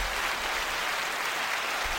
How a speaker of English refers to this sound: Thank you. You hear clapping? Thank you. I mean, from upstairs, yeah.